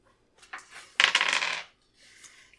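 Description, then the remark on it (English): Dice rolled for a test in a tabletop game clatter across a hard table: a few light clicks, then a loud rattling tumble lasting about half a second, followed by a fainter settling rattle. No voices. “Her dice do not like her tonight.”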